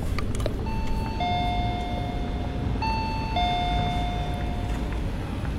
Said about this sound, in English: Well, I've arrived at the Folded Wing Studios in Clerkenwell, and you're about to hear what may be one of the rare pleasant noises in this piece of a door chime, followed by the voice of the office manager,